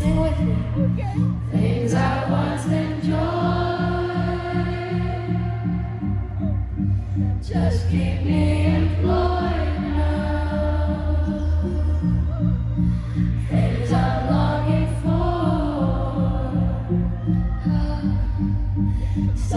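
A slow pop song from a live concert plays at a steady, loud level, with the crowd singing along loudly, a sung vocal melody drifting over sustained low synth chords and a soft, pulsing bass.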